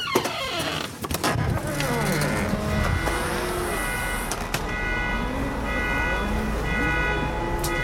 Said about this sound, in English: See, it's not so bad out here. Got your usual, you know, sounds for a neighborhood in the DC metro area. Pretty safe. Really warm out. So that's what it's like outside here in DC.